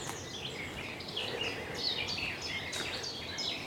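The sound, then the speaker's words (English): A garden warbler sings a long, rambling, scratchy warble, its rapid phrases running on without pause over a steady outdoor background hiss, by a small settlement of houses with gardens at the top of a track. “The longer-winded scratch here. It's the garden warbler.”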